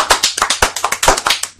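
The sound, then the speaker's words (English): A quick run of hand claps, about a dozen sharp, fairly loud smacks in an uneven rhythm, with no voices over them. “Alright, I applaud that.”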